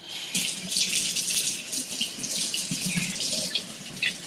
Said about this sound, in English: Let me wash my hands because I touched my hair.